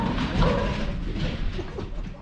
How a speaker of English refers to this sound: Them dogs running loose up there.